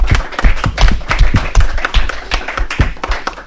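A crowd applauds steadily, many hands clapping in a dense, fairly loud patter of sharp overlapping claps that stays even throughout, with no voices over it.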